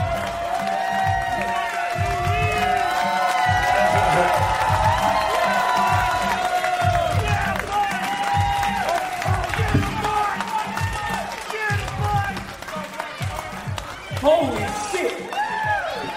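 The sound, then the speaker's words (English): A live audience in Philadelphia cheers steadily, a dense roar of many voices with high whoops and scattered clapping, staying loud for about sixteen seconds with a brief surge near the end. “You mean when we went to Toronto, the crowd got more hyped than Philadelphia?”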